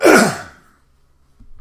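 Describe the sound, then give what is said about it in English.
A single loud, raspy throat clearing bursts out and fades within half a second, followed by near silence and a faint low rustle at the end. “Excuse me again, I'm going to clear my throat.”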